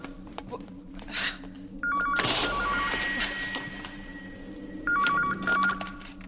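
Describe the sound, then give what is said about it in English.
A telephone rings in a phone box that is Doctor Who's large time-traveling spaceship, in two short warbling bursts a few seconds apart, over a low background hum and clatter with no talking. “In this clip, Karen Gillan's character, Amy, is stepping onto Doctor Who's large time-traveling spaceship as the phone rings.”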